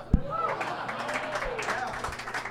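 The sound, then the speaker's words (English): An audience claps in a steady, dense patter after the name of the film Surviving Christmas is said, with scattered voices and murmurs mixed into the applause. “The applause is only for saying the name of the film, definitely not for the film.”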